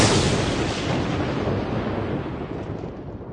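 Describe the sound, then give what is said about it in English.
A loud, sharp crack of thunder from lightning bursts in at once, then rolls into a long, rumbling decay that fades gradually over a few seconds. No voices are heard. “The crack of lightning.”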